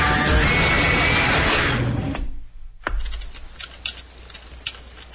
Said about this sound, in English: Is somebody typing like a fucking madman over there? Or that's me. I'm definitely like what are you doing over there?